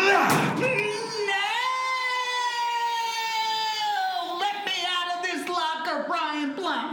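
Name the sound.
door slamming shut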